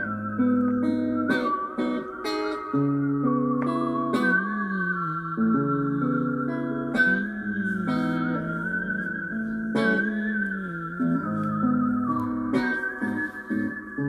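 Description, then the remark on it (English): A melody is whistled clearly and steadily, played from a recording, over a backing of sustained instrumental chords, with bright percussive accents recurring every couple of seconds, playing continuously at a moderate level with no talking. “….”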